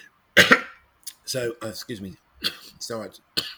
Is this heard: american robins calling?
no